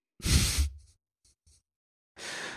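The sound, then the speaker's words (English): A loud yawn: a long airy breath with a low voiced groan, then a few faint mouth clicks and another drawn-out breathy exhale. No talking. “Pause for yawns.”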